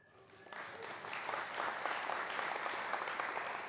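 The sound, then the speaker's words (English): A crowd breaks into applause for a speaker's wife of 48 years as she is introduced, the clapping swelling quickly from a few hands into a dense, steady patter of many people that holds at a moderate level throughout. “But don't clap too loud, because she just told me if I want to make it to 50, I got to sign a 2-year contract.”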